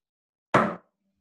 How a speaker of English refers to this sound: Someone else try and make noise with their gavel. Mine's a big hammer. I only hit it really lightly.